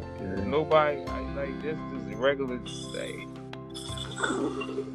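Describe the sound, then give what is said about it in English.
A long, voiced yawn whose pitch swells and wavers, followed by a shorter sighing exhale, all over a steady low musical hum. “Excuse me. My yawning, man.”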